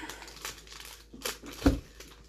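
Soft paper crinkling and rustling close by, with a few brief crackly bursts and one sharper thump near the end, fairly quiet and with no one talking.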